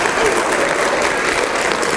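Loud, sustained applause from a large crowd, a dense wash of clapping that stays steady and unbroken for the whole two seconds with no pauses or voices standing out.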